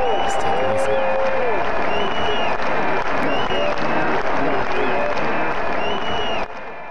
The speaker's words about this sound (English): I think we need loud in the studio. We need to go with a little bit of shouts from the stands.